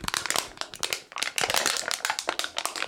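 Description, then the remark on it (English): Loud crinkling of a plastic food package wrapper, with rapid irregular crackles and crunches running continuously for a few seconds, no voices present. “The whole time he's just sitting up here, he found the loudest package of food and just”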